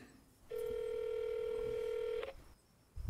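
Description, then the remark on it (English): A telephone keypad tone rings out as a single steady electronic beep lasting almost two seconds, loud, against a quiet background with no one speaking, as a phone call is being made. “So we're going to have to go do some door knocking if this phone call doesn't work out.”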